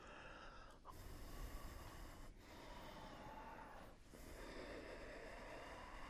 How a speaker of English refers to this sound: Your listening is what creates ujjayi breath. You discover it through listening. And your ujjayi breath is what cultivates a deeper listening.